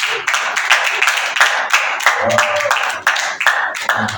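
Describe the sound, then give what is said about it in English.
An audience at a worship service claps steadily for first-time visitors in a continuous patter of many hands, fairly loud, with some voices mixed in underneath. “Please clap for them.”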